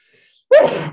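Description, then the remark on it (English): A single sharp sneeze bursts out after a moment of near silence, loud and abrupt with a breathy, noisy tail. “Bless you.”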